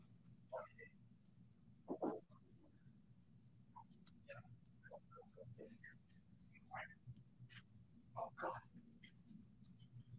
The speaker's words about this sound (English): My dog is driving me crazy, whining. Give me 30 seconds.